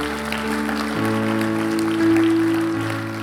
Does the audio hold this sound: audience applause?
yes